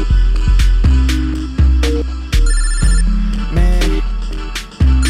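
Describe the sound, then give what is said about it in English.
A loud phone ringtone plays a bright electronic melody of plucky, bell-like notes that repeat in a steady pattern, with nobody talking over it. “I shouldn't answer this phone, yo.”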